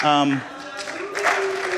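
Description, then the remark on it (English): An audience claps in a steady, dense patter of many hands, with a voice briefly sounding at the start. “If you guys, yes, we'll clap.”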